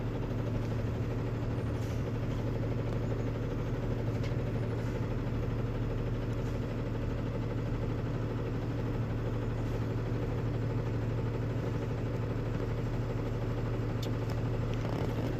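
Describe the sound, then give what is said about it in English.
A large truck engine idles with a steady, low rumble and throbbing hum that holds evenly throughout, with no speech over it, as the truck is backed up and maneuvered beside a building. “The tail of the truck will hit that building.”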